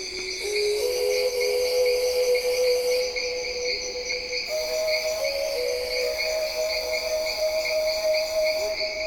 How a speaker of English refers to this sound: it begins with sounds that I recorded in the Amazon at a place called Kilometer 41, which is a research station north of Manaus, which is kind of midway in the Amazon.